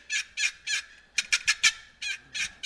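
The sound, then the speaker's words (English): A loud long box turkey call, played to make turkeys gobble, gives a series of raspy yelps, three spaced notes, then a quicker run of four, then two more, clear with no talking. “But I promise you one thing, if you get out there with this old long box, when turkeys are not gobbling, you crank up that thing.”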